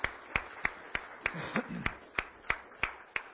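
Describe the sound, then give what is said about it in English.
An audience claps hands for the dads in a steady, even rhythm, about ten sharp claps roughly three per second, over a soft crowd murmur with a brief voice rising midway. “Give the dads a hand clap.”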